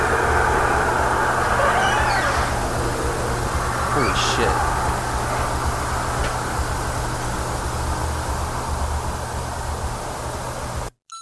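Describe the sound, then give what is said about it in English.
A car's steady roar and rumble fills the whole recording, loud, with a low engine hum underneath and no clear rise or fade before it cuts off abruptly. “Yeah, you can hear it's kind of because the car kind of covers it, and it's kind of hard to hear like when it's super amped up like that.”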